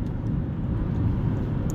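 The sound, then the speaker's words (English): Steady low rumble of a car interior while driving to work at a gym, a constant engine and road drone with no voices or distinct events. “Honestly, not sure if this is being recorded through my phone or through my microphone in my car, but we'll see what happens.”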